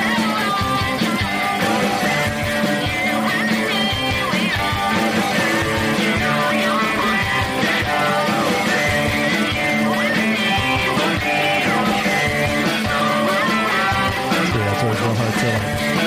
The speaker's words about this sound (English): But yeah, this is the one I made. That's all like keyboard drumming.